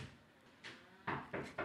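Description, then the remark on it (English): Someone tries a locked door: a light knock-like jolt, then three quick, louder rattles of the handle and frame in close succession, with no voices. “Hey, the door's locked. Can someone open it?”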